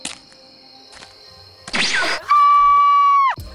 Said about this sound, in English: Good God, man, you cannot do that. You scream like a girl. Well, technically, that means you scream like a girl.